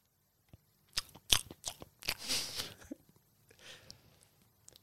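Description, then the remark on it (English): Crisp crunching and wet chewing of pieces of lemon, with several sharp bites early on followed by softer, irregular munching that fades toward the end. “And I want you to taste that sourness and that bitterness, because you keep chewing, and those little lemon bits and the lemon sentiments in your mouth, and just keep chewing until I tell you to stop.”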